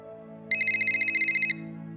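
A telephone rings once with a fast, warbling electronic trill that lasts about a second, loud and close, over a quiet low background hum.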